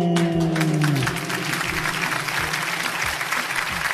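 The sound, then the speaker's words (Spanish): A crowd bursts into sustained, dense, loud applause, with a brief tonal sound fading out in the first second before the clapping continues on its own. “¿Por qué no me dan un aplauso como si estuviera yo dando un discurso político, tú?”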